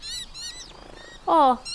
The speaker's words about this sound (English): And the noise is a clue to what those birds are. Do you know? Those grey birds are noisy miners, and they're still screeching away so that other bird doesn't come back.